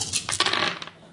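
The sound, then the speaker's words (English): Dice rolled in a game clatter and rattle across a hard surface in a quick burst of bright clicks, tumbling for about a second before settling, with no voices. “Give me a roll.”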